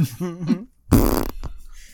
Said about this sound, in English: Was that just like a little fart noise?